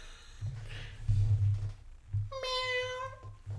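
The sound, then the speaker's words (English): A person imitates a cat, giving one drawn-out, nasal meow that rises and then holds steady. The voice is fairly loud, with a low background hum underneath. “First one is a cat.”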